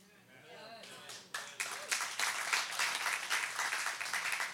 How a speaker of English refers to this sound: Like three claps, thank you. Anytime you talk about persecution, you got one clap.